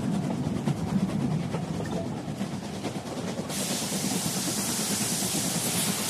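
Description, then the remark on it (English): A train rumbles steadily in the engine room of the train, with a low rolling drone and rhythmic clatter, then a loud broad hiss of steam billowing out of the engine joins in halfway through and continues to the end. “Give you some listens to some train soundscapes.”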